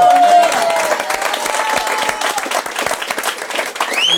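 An audience breaks into sustained applause, a dense, steady wash of many hands clapping at fairly loud level, with a few whistles rising above it for the full length.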